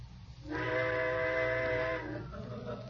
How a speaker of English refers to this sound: What was that? Trains. I suppose they're going to blow all night now. Well, go ahead, blow.